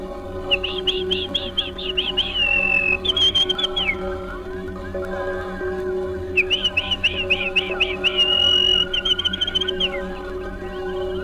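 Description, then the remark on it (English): Two bursts of male chaffinch song, each a quick run of repeated bright notes ending in a sudden flourish, heard clearly over a steady low background hum. “As many as 10 songs a minute sometimes a chaffinch will get through.”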